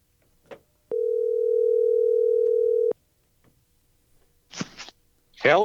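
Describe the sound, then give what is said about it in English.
A telephone dial tone while calling a tank rental provider in the U.S.: one steady, loud, mid-pitched hum holding for about two seconds, then cutting off, followed by a couple of brief bursts of voice. “Okay, all right, I'm going to call him because I don't know.”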